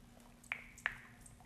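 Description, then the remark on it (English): Two quick, soft wet drips or squishes as water meets a sponge pad, close-up and quiet, about a third of a second apart, with no one talking. “We're gonna open the water, put it up onto the sponge.”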